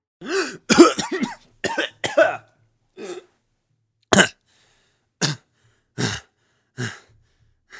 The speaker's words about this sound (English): And a few moments later, … comes out sputtering and coughing as well.